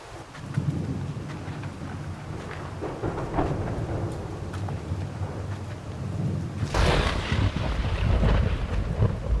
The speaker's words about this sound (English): Wow. It sure is raining hard. We should get moving.